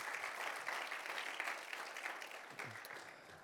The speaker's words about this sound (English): Let's give all the guests a round of applause and all the viewers.